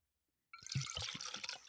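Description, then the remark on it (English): After a brief silence, a drink pours steadily into a tie-dye-colored Patriots cup, a bubbly splashing stream with a few low glugs, lasting about a second with no voices. “I was going to pour another one in there, but it might have been a little too much.”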